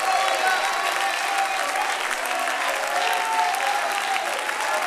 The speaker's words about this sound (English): Come on, clap again, clap again, clap again, clap again, clap again, clap again.